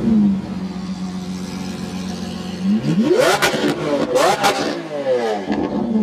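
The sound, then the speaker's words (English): A powerful Lamborghini 12-cylinder engine idles with a low steady drone, then revs hard several times, its pitch sweeping up into loud screaming peaks and dropping back between blips. “For example, the 12 screaming cylinders of a Lamborghini engine revving.”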